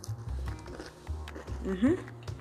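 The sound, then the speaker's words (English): Crunching bites into a crisp, freshly cooled homemade cinnamon graham cracker, with a few short crackly bursts and dull chewing thumps, then a brief hummed "mm" of approval near the end. “Okay, so now that these have cooled a little bit, I can actually kind of, they have a little bit of a crunch to them, I think, now.”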